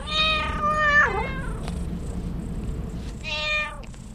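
Teddy the cat meows twice, a long, wavering meow followed by a shorter one after a pause, heard clear over a low background rumble.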